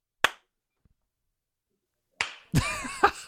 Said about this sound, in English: Ready? Live on the air, we're going to do the clap test. I'm going to go ahead and clap.